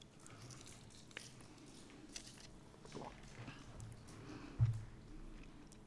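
Soft chewing of communion bread during a church communion service, with small moist bites and faint crunches spread through the moment and one slightly louder bump near the end. Nobody speaks.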